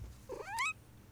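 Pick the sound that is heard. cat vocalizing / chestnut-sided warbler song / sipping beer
cat vocalizing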